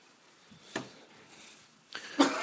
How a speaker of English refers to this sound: He's got whooping cough.